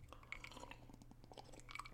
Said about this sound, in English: Little limeade sip.